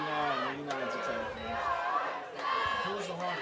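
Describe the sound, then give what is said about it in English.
A dense, steady roar of a large Marple Newtown football stadium crowd cheering and shouting at a night game, sustained throughout with overlapping voices swelling slightly, without any single clear speaker. “Marple Newtown crowd getting a little louder, Steve.”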